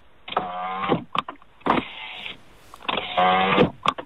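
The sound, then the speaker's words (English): An electric car window whirs through three motor runs, each a steady buzzing hum lasting about half a second, separated by soft clicks and thumps as it stops and reverses. “It's a window going up and down. It's an electric window.”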